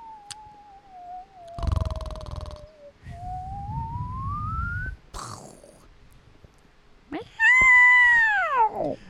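A cat meows in long, drawn-out wavering cries, with rough rumbling noise in between and one loud, strained meow near the end.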